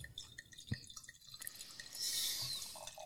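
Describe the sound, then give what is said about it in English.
Wine is poured out, starting with a few scattered drips and splashes, then a brief, steady gushing pour into a sink. Fairly quiet, with no talking. “I've already poured mine out.”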